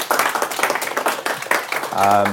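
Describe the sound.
Audience applause after a Friday lunchtime lecture from the Open Data Institute: a dense, steady patter of many hands clapping at moderate loudness for about two seconds, then a voice begins over the fading claps.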